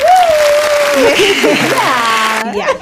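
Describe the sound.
A burst of recorded applause, a steady hiss of clapping that cuts off abruptly near the end, with people talking and cheering loudly over it.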